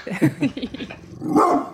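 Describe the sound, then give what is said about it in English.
A dog barks in a quick run of short, sharp yaps, then lets out one longer, louder bark at the end. The barking stands alone, with no talking. “you didn't even have a uniform and you almost got a dog bite.”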